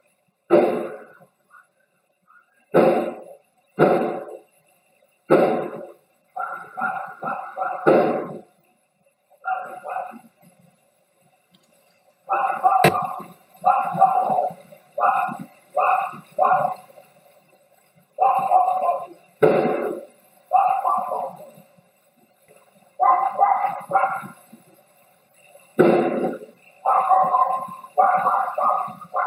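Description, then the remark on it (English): Gunshots at 10:37 at night: several loud, sharp cracks in quick succession, followed by a longer run of rougher, clustered bursts with short pauses between them. “those first pair of shots or loud noises, they do sound like gunshots to me.”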